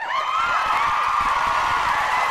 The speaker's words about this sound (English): You guys want, where's the round of applause, guys? Where's the crowd at?